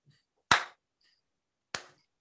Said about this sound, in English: Well, my note here is just slow clap, because he enters with a slow clap. And I can never take any slow clap seriously. Who would do that? How much of an arsehole do you have to be to walk in a room and go...